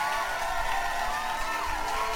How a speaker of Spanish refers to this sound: Un aplauso para Aisling Brooke.